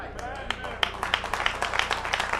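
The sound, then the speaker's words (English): Scattered audience clapping, a quick run of sharp, uneven claps that builds slightly in density, with a faint voice mixed in underneath. “Well, you don't have to clap.”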